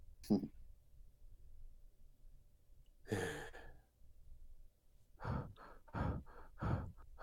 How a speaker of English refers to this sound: I told you guys I was going to start breathing heavily.